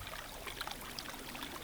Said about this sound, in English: I'm recording this by our bubbling brook on our property.